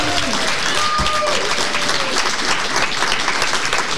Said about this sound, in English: Give her a round of applause, folks.